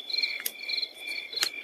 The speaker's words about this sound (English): The woods surrounded them. They were pitch black and silent, save for loud crickets.